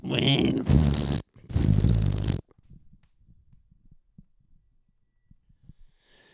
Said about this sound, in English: It's that farting crab. What do you want? The old farting crab. Found him. Found a bunch of them.